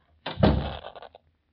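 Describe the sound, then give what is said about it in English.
A door swings shut with a solid thump, followed by a couple of softer rattling clicks as it settles into the latch. No one speaks. “I'll close the door”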